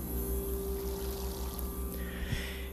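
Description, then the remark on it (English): A steady electrical buzz hums continuously beneath a soft bubbling, fizzing wash of ozonated water, unchanging throughout, with no one speaking. “And I trust that you are drinking your ozonated water like I am. Check it out. You can hear it buzzing.”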